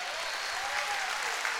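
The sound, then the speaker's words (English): An audience clapping their hands together for Jesus Christ, a dense, steady wash of applause from many people filling the room at a strong, even level with no voices. “I think you ought to clap your hands, not for me, but for him.”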